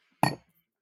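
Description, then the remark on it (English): A single bright clink of wine glasses touching in a toast, short, ringing briefly before fading into silence. “Well, should we take another sippy dippity of wine?”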